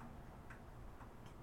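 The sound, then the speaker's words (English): A steady clock-like ticking, sharp clicks about twice a second, stands out against a constant low background hum, with no voices. “I hear this large, long ticking noise.”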